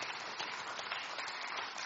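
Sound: audience applause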